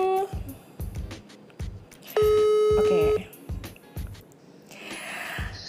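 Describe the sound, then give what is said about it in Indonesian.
A phone line rings with one long, steady electronic tone lasting about a second while calling friends, clear, over a steady thumping background beat. “Gue mau menghubungi teman-teman segila gue ini. Wait a minute ya guys ya. Gue telepon dulu.”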